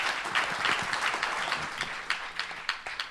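An audience applauds a speaker at the end of a question session, dense overlapping claps that thin out toward the end, leaving a few scattered, sharper individual claps.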